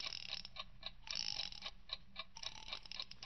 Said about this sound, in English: First, set the alarm. When she gets back from shopping around 2:30, you better set it for 3 o'clock. Good. Now then, wind it up.